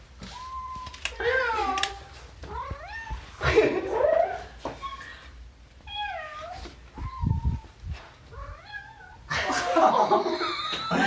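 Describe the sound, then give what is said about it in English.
A female cat meows and yowls repeatedly in drawn-out, wavering cries, loud, with short pauses between calls and a harsher outburst near the end. “Alex, just participate in our cat chat, please!”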